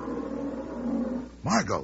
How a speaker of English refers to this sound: That lion. Oh, magnificent, isn't it?